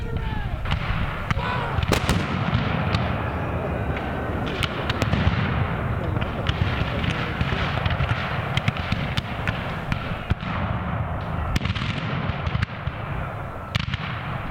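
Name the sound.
cannon fire booming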